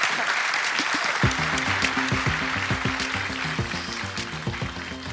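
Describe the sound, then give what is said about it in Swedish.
A crowd applauds steadily and fairly loudly throughout, a dense wash of clapping, while music with a low, steady beat fades in underneath after about a second. “En stor applåd för Alexander Hörs.”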